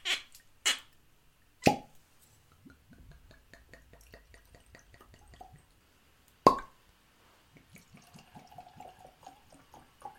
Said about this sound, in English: With these two different styles of rye, I'm excited to start tasting. So let's get these poured and jump right in.